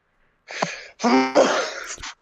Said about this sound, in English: I can't tell if you sneezed or if you like try to laugh. I sneezed. Okay. He laughed so hard he sneezed.